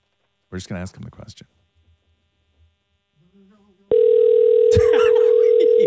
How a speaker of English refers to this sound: It's ringing.